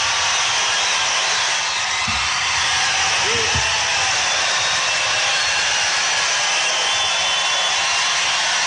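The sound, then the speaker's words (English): Wild applause from a large crowd at CPAC for President Trump, a loud, dense, unbroken wash of clapping that holds steady for the full length without letting up, with no one speaking over it. “Wild applause.”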